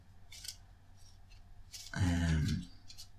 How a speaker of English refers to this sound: You'll maybe hear me shuffling some cards as I'm recording this.